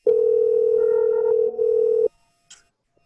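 A steady, loud electronic phone tone hums for about two seconds with a brief wobble near the end, then cuts off, followed by a short faint click as the call connects. No talking.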